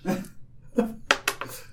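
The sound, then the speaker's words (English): Dice tumble and clatter across a table in a quick series of sharp, bright knocks and rattles, several bursts in under two seconds, with some faint murmuring underneath. “Yep, dice rolling everywhere.”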